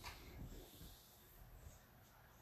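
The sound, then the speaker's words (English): A dog yawns, a soft breathy exhale with a snuffly, wheezy edge, quiet, with no one talking over it. “My dog was yawning.”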